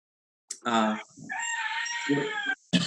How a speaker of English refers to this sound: Sorry about that. My rooster is opinionated.